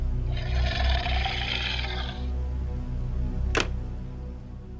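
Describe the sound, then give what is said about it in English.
A low, rumbling growl heard over a hotel phone call from reception drones continuously and fairly loud, with a brief raspy hiss early on and a single sharp click near the end. “And a low growling.”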